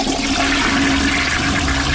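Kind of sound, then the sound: household object, toilet flushing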